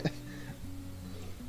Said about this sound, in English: Coughing in the mic. Sorry, guys. Cut that out.